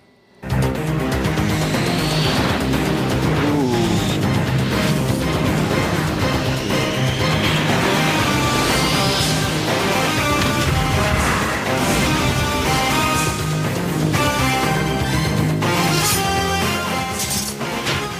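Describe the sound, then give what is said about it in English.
The theme of the 1992 cartoon X-Men: The Animated Series plays loud and dense, a driving instrumental with bright, punchy synth and brass-like stabs and a steady pounding beat, continuous for the full length with no voices. “The X-Men in the background there. The X-Men theme song.”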